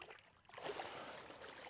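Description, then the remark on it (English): Water splashes and churns loudly after a short quiet moment, as a person is immersed in water baptism and lifted out. The sloshing continues steadily to the end, without talk. “because of your faith and trust in Jesus, and because of your desire to live for him, and to publicly make that known through water baptism, I now baptize you in the name of the Father, and of the Son, and of the Holy Spirit.”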